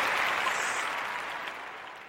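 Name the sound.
audience applause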